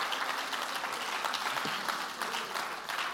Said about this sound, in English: Clap your hands and praise him for his word.